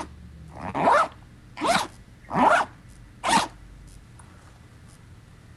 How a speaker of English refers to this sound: Okay, we'll go. Try to count the zippers. Ready?